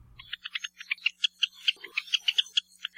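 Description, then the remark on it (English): Java sparrow calls: a rapid, steady run of short, high, metallic chips and clinks, roughly six per second, fairly loud and alone with no talking. “But we also got their lovely calls for you, thanks to the Macaulay Library at the Cornell Laboratory of Ornithology.”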